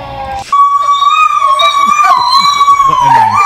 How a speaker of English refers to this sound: Sounded like least intimidating dogs. Those aren't greyhounds. I don't want a greyhound in distress.